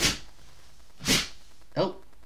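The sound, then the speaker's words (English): Two or three sharp, breathy sneezes burst out in quick succession, each a short loud blast with quiet pauses between. “bless you.”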